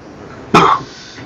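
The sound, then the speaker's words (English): A single short cough, fairly loud, bursting out sharply and fading within a fraction of a second against a quiet background. “Mine has just been a little bit of a cough that's always been there, but, you know, yeah.”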